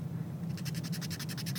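A red fine-tip Sharpie scratches across paper in about a dozen quick, evenly spaced strokes, bright and hissy, beginning after a short quiet moment over a low steady hum. No one speaks.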